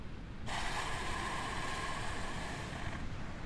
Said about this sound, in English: That's the relaxing sound of an elephant seal snoring.